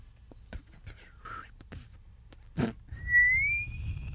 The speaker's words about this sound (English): I've never seen someone struggle to whistle about as much as you.